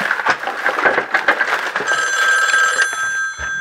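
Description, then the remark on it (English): A telephone bell rings for Hank with a rapid, clattering trill that gives way to a steadier sustained ring partway through, loud, with no voices. “Now remember that I said that Hank would receive 2 phone calls that would change everything, right?”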